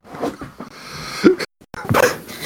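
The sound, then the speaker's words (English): A dog makes a few short, strained barks and whimpering yelps, with a brief silent pause before a louder burst near the end, over some background noise. “I was dealing with the dog.”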